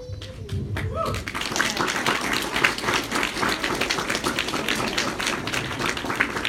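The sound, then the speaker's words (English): A crowd bursts into steady applause for the MAC Development board of directors, many hands clapping in a dense, even patter that holds at a fairly loud level, after a brief tone and murmur at the start. “I do truly want to give my board a round of applause again because they've worked so diligently.”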